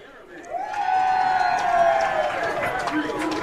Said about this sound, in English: And the family of the man that had the sack is apparently sitting right in front of us as the crowd goes bananas.